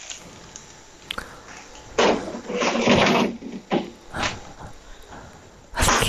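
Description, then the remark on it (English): A fridge door and drawer are opened: a long scraping, rattling slide, followed by a few shorter bumps and clunks at irregular intervals, with no one talking. “I went in the fridge.”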